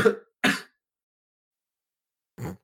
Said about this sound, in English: I think with that cough we end today's episode.